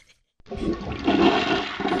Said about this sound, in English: That's the closest thing I can get to the squirting. A toilet flushing? That's the best I got.